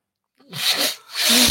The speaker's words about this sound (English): I used this orange cloth to clean my stove. And now I'm blowing into it.